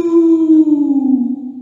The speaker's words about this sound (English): I think he said who cooks for you, but Ferris is trying to get us into the next segment. It's a bird.